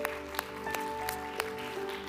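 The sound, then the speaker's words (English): An audience at Calvary Church claps hands to the Lord in a steady unison rhythm, sharp claps landing about three times a second over sustained keyboard chords, with no one speaking. “Can we give a hand clap to the Lord today?”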